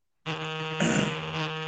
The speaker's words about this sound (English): Whose phone is that? That's Deion's. That's what Deion's phone does when he hears a word out.